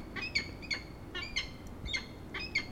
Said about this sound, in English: That's an interesting call. That's falcon. I think we're going to have a food exchange or something here in a minute. Very much a begging call. It's like, provide me with food, please. And he hasn't obliged yet.